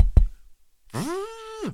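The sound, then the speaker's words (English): A couple of quick knocks on a glass window, followed after a brief pause by a sustained tonal hum that rises, holds steady, then falls away. “Knock on their window.”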